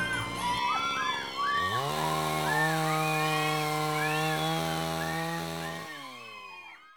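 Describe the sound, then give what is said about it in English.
A chainsaw engine sputters to life in a store after a moment of shoppers' chatter, then revs into a loud, steady whir that holds for several seconds before winding down near the end. “He thought to himself, grabbing one of those bad boys, firing it up so that the din of shoppers' voices were suddenly silenced by the whir of the engine, now that would be a good way to get out.”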